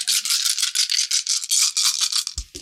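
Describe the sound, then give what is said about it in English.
Many dice shaken together in a container to roll rubble damage in a tabletop game: a dense, bright rattling in quick rhythmic pulses that keeps going for a few seconds and ends with a couple of dull knocks. “God damn, it sounds like he's shaking a container of sprinkles.”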